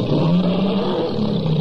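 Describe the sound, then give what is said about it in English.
A tiger roars loudly, a deep, rumbling growl held steadily for a second and a half with no break and no voices, presented as the tiger in a car's gasoline tank filled with Esso Extra gasoline. “Then there's a Tiger in your tank.”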